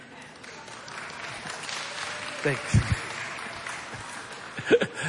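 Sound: partial audience applause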